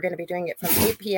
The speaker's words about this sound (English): Bless you, puppy. Not an EVP. My dog is having literally a sneezing attack. I hope that's it.